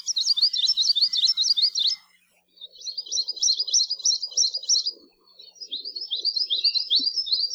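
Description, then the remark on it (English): An Anianiau, a Hawaiian bird, sings three bursts of sweet, rapid trilling, each lasting about two seconds with brief pauses between, clear against a quiet background. “Like most Hawaiian birds, the best way to find them is by listening for their song, which can be described as a sweet, fast-paced trill.”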